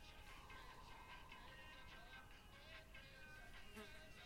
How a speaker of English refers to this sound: I'm not sure if you guys can hear the fly buzzing around me. That's very annoying, for me at least. I don't know if it is for you.